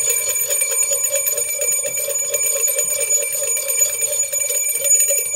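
Bells ring continuously in a bright, dense metallic clatter, holding steady and fairly loud throughout with no pauses and no voices.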